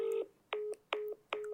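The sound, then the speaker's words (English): A phone busy tone from a declined call beeps four times in quick, even pulses, a steady electronic pitch switching on and off about every fifth of a second, clear and alone with no voices. “Declined.”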